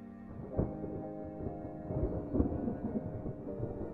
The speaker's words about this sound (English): Thunder roared across the choppy waters of Lake Michigan